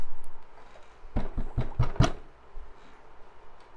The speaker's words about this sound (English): So, you're sitting chilling in your apartment. Basically, you're just between jobs. And there is a rather sudden and firm knock at the door.